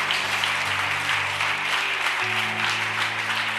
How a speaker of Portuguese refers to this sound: Dê uma salva de palmas a Jesus por isso.